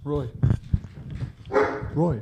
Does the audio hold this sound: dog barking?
yes